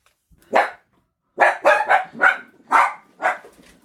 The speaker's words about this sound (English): That dog is so noisy. Don't people take care of their pets? This is ridiculous. Someone needs to let that dog out. It's early on Wednesday, and Miss Peck has been hearing the Wilds dog bark all morning.